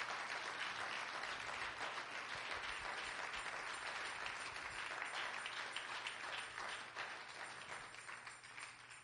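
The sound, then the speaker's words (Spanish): A church audience claps together as an offering of applause to the Lord, sustained, dense applause, steady for several seconds before gradually thinning toward the end, with no voices over it. “Dele una ofrenda de palmas al Señor.”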